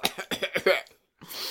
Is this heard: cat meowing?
no